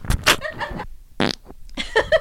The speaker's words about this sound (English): Farted.